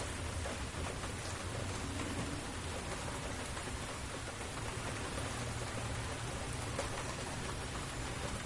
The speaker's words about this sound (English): Think about how calm the sound of the rain makes you.